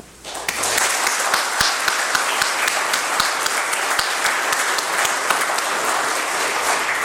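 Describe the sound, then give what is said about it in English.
An audience at a church service breaks into sustained applause for all the work that went into the day, many hands clapping together in a dense, steady roar that starts abruptly and holds at full strength throughout, with no voices over it. “I would like to just pause for a moment and just give a rounding applause for all of the work that has gone in for today and our message, that Christ has risen.”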